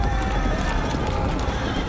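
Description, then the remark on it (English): A thick, steady rumble of a huge, heavily armed cavalry of knights and mercenaries galloping, hooves pounding continuously at a constant loud level, with scattered neighs and whooping, howling voices mixed into the din. “A rumbling that becomes a thundering. Then into view comes a huge, heavily armed body of knights and mercenaries.”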